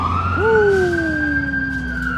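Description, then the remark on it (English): A loud fire truck siren wails, its sustained tones sliding downward as the truck passes by and turns, with traffic rumble underneath. “Let the fire truck fly by.”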